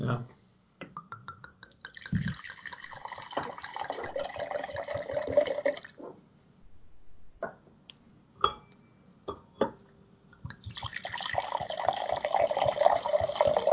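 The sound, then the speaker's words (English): Red wine, a Termez Tempranillo from Spain, glugs and splashes as it is poured from a bottle, two pours separated by a short pause filled with a few sharp clicks and taps. “We have a bottle of Termez. It's a Tempranillo from Spain.”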